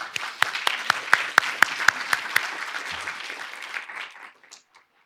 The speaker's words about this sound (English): With that, I would like to welcome the panel with a big applaud. Thank you.